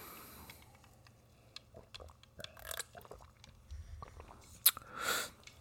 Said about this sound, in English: Give me a second. Let me take a sip.